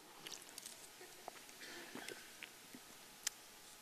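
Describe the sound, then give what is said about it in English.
Someone drinks water from a glass: quiet sips and swallows with small wet mouth clicks and a faint clink, no one speaking. “It looks really good, so I'm going to drink from it.”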